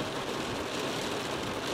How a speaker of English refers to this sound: It reminds me of monsoon weather, you know, like just really, really, really intense rain. It's gonna last probably some time